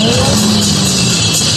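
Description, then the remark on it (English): A taxi cab engine revs loudly, its growl climbing in pitch and then holding at a steady, throaty roar for a second or so, as the driver starts driving the cab toward a man. “But the guy revs the cab.”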